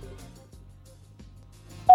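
A single loud phone keypad tone beeps sharply at the very end as the 5 key is pressed to leave a callback number, after nearly two seconds of low, steady background hum with no talking.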